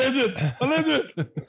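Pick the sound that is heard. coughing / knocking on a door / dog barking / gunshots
coughing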